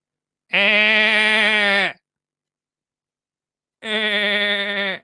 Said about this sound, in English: I don't know if you've ever been to a farm, but a goat is not quiet, mate.